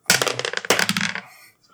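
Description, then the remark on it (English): Dice are rolled, coming up two fives in a row: they tumble and clatter in two quick bursts of sharp, rattling clicks, each fading into a softer skitter before settling, with no voices over them. “Yeah, you got 2 fives in a row.”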